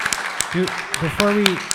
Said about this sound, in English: Give yourselves one more round of applause.